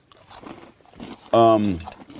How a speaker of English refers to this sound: Oh, so good. Super crunchy. Caramely. There's not much Cheetos taste there. They're just crunchy like a Cheetos. It's right? Kind of just like a crunchy Cheeto.